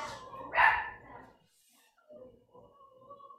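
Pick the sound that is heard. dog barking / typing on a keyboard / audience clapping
dog barking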